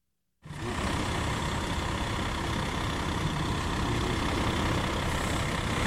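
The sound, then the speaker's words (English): A heavy garbage truck engine starts up abruptly and keeps rumbling steadily at the Dane County Landfill on Route 12 near Madison, a dense, loud diesel drone with a broad noisy hiss layered over it and no voices. “Every day in Madison, about 300 trucks and cars drop off 1,000 tons of trash at the Dane County Landfill on Route 12, just on the other side of the interstate from Madison.”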